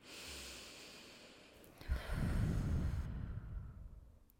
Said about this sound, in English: Let's do some breathing.